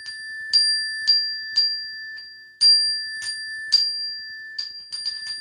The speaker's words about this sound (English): So I will play this bell with the caveat that those who aren't musicians build platforms for those who can build musicians, for musicians. So this is the artery bell.